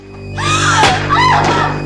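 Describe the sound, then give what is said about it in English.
A woman in a movie lets out a startled scream as a book falls out of a closet she opens: loud, one sustained wavering shriek that bends in pitch and lasts about a second and a half. “But she screams like a cat jumped out at her, mm-hmm.”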